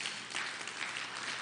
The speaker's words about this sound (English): 47% of our church. Absolutely, you can applaud that. Yes.